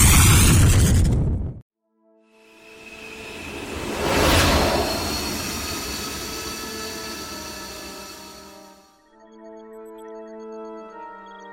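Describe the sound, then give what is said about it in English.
A loud burst cuts off abruptly, then after a brief silence a huge explosion of a spaceship whose drive overloaded swells into a roaring boom and rumbles on for several seconds before fading into a steady low electronic hum. “We shouldn't be caught in the explosion.”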